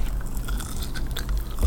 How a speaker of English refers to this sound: Well, I've just been given some garlic bread, so I'm gonna do that. Munch.